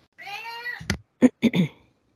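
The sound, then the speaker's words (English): A male cat meows: one long, drawn-out meow followed by three short, clipped meows in quick succession, with no one talking. “I swear that cat now knows that he's on the radio, and the cat comes in and meow, meow.”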